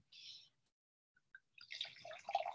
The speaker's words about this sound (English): Pour it up. I always like the way it sounds when you pour some wine.